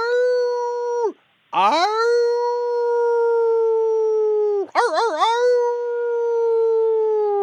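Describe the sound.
A person imitates a werewolf howl: two long, sustained howls at a steady, fairly high pitch. Each one rises at the start and drops off at the end, and the second wavers briefly midway.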